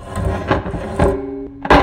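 A wooden chair scrapes and shifts in a few rough bursts, with a squeaky, groaning drag in between and a final louder scrape at the end. No one speaks.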